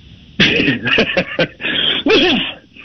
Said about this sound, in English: Did you just sneeze or cough? I'm just curious. It was a cough. Okay. I got allergies.